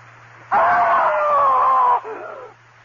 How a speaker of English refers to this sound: I screamed so loudly there was blood in my throat.